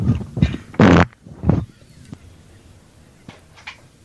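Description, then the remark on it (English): A loud fart made over the phone comes out in a few sputtering bursts, the strongest one about a second in, followed by a shorter blast and then faint scattered noises. “I'm going to fart on the phone.”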